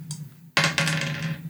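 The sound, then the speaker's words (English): Dice are rolled for a combat attack in a game and clatter across a hard table: a sharp first impact, then a quick run of bright rattling knocks that slowly settle, over a low steady hum with no voices. “Give me some of these other dice.”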